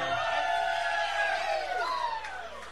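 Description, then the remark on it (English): An audience applauds and cheers loudly, with many overlapping voices whooping and hollering in sustained rising and falling tones, tapering off slightly toward the end. “But you all give a big round of applause for a man that, like I said, he loves music as much as anybody I know.”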